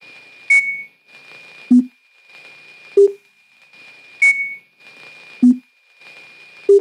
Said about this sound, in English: So here I'm going to play you some three sinusoidal tones